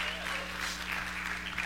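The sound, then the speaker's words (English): An audience claps steadily, a dense, even patter of many hands with no voices standing out, sustained at a moderate level over a low background hum. “Speaking about getting a round of applause, did you just soak this in this morning?”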